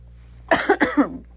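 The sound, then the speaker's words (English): A pair of quick, dry coughs in close succession, fairly loud, with no talking around them. “Excuse me, sorry. This cough.”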